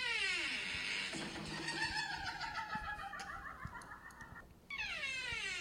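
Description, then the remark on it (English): A door creaks, played from a video, in a long, wavering, high-pitched squeal that rises and falls almost like a wailing cat, breaking off briefly near the end before groaning on again, with no voices. “It's just know that what Julie's playing from a video is just a door.”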